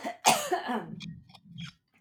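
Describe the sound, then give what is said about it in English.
A person clears their throat: one sharp, harsh burst followed by a rough, rumbling rasp that trails off with a few small clicks and breaths. “excuse me, I have to clear my throat clearly.”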